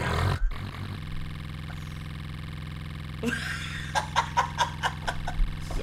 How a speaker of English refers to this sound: Look, I'm doing cards. I'm shuffling cards. A lot. You ever shuffle 10,000 cards?